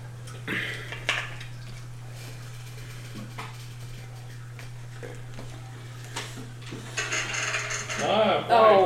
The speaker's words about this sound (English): Oh, awesome. Clickety cool. Clackety. It's always bad when the DM does not have enough dice to roll on the table.